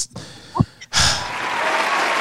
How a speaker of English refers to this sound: Could you give us some claps or something?